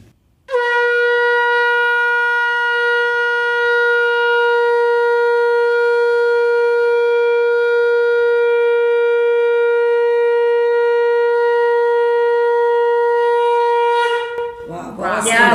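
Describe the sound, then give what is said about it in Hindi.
A conch shell (shankh) is blown in one long, steady, sustained tone lasting about fourteen seconds, loud and rich with harmonics, ending with a brief rough breathy flourish, as a demonstration of the proper way to blow it. “तो मैं एक बार आपको सुनाती हूँ कैसे शंख बजाया जाता है।”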